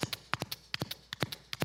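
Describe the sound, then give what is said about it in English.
A voice imitates galloping horse hooves with quick clicking, clopping sounds in uneven triplet bursts, fairly loud, repeated several times with no other sounds. “That was horses, for those of you that...”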